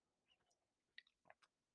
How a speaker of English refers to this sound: Get a sip of coffee here.